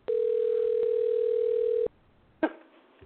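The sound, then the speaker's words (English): A steady, loud telephone dial tone hums for nearly two seconds as someone makes a phone call, then cuts off abruptly, followed by a brief clunk or rustle as the line goes quiet. “Well, gotta make a phone call, see if she's awake”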